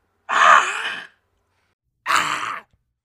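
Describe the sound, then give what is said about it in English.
A person imitates a zombie scream with two raspy, breathy vocal bursts, the first loud and almost a second long, the second a bit shorter and quieter after a brief silence. “Can I try the scream, the zombie scream that you use for the sound?”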